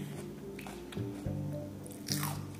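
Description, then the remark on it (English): Crisp crunches of someone biting into a fresh green bell pepper, three distinct bites spaced about a second apart, with a faint steady hum underneath and no talking. “So as you hear, they're nice and crunchy too when fresh.”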